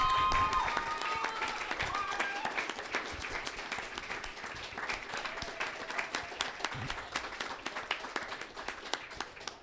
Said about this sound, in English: So, yeah, huge round of applause